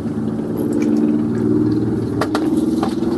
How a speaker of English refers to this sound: Texas motorcycles.